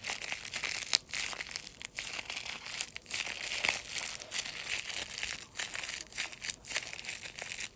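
Continuous crackling and crinkling, like plastic or paper being crumpled, with dense bright irregular crackles and brief pauses throughout, fairly quiet and steady, with no voices.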